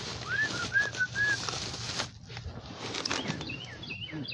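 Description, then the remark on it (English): Pigeons cooing outdoors at a workplace in the morning, a quick series of three or four short, soft calls near the start, then a few fainter calls later, over steady background noise with no one talking. “Y'all hear my bird friends greeting me?”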